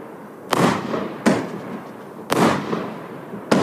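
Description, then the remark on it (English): Fireworks from a 49-shot cake being demonstrated crackle and pop in four sharp, loud bursts at uneven intervals, each followed by a fizzing, sputtering tail that fades before the next. No voices are heard. “There any crackle yet? Oh, there we go. Get some crackle.”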